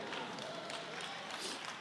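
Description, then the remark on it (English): Hand clapping from a young audience member during a speech, a steady, dense patter of claps that holds at an even loudness for about two seconds with no pauses. “Because you are young, I really appreciate your hand clap, my brother.”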